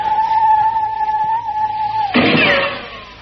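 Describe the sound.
A person imitates a bird call: a long, steady, mid-pitched whistled note holds for about two seconds, then breaks into a brief, louder flurry of chirping, warbling sounds. No one talks.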